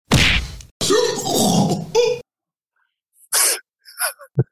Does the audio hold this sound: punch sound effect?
yes